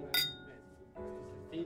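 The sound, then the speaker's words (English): Glasses clink together once in a toast, a bright chime that rings on with a sustained tone, while low background sounds continue beneath it. “Cheers to that.”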